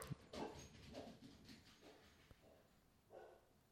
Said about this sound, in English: Basically our deal, sorry, my dog started freaking out. Maybe they think someone's here.